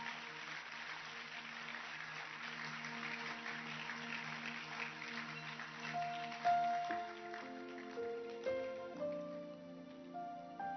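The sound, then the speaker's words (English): An audience claps steadily in a dense, even wash of applause for several seconds, then the clapping thins as sustained keyboard-like musical notes come in and continue over it. The applause is for a sketch production. “Let's clap our hands for this production.”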